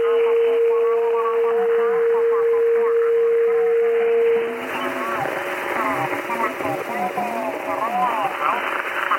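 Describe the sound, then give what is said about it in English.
A steady whistling tone sits over garbled single-sideband radio voices, then cuts off abruptly partway through as the radio's notch filter is applied, leaving only the muffled, band-limited chatter and hiss. “And now, hear what happens to it when we apply a notch filter.”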